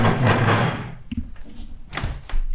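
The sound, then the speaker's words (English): A fridge door swings open with a broad rushing whoosh as someone fetches a juice, then a few soft thuds and clunks follow as it is shut, with quiet handling noise between. “She's returning from the fridge.”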